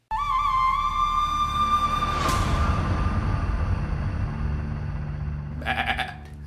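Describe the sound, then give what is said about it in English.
A goat bleats loudly in a long, wavering cry, followed by a second, shorter quavering bleat near the end, with a low background rumble. “Thank you to the goat who joined us.”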